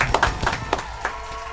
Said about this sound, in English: So let's clap it up, though. Big up, big up, big up. Appreciate it.